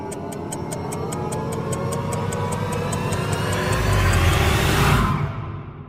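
A 30-second 'pressure gauge' timer used for a sports segment ticks steadily, about three sharp clicks per second, over a rumbling whoosh that swells louder and louder before everything cuts off abruptly after five seconds.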